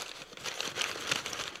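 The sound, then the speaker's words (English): Continuous crumpling and crinkling of brown packing paper while unboxing a package holding the Batman movie The Doom That Came to Gotham, a busy papery rustle with sharp crackles scattered throughout, no voices present. “Lots of brown paper in these packages.”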